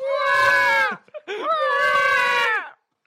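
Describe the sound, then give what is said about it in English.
A voice imitates the noise a baby makes, likened to a submarine-is-sinking alarm: two long, loud, harmonic wails with a brief catch between them, each holding steady before sliding downward. “Babies are basically kind of like this submarine is sinking noise.”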